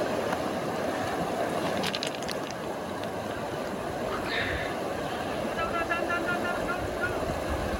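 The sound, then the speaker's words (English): A man wading across a river on his own, with steady rushing water and splashing that stays loud throughout, a few sharp knocks early on, and muffled voices faintly in the background. “trying to cross the river on his own.”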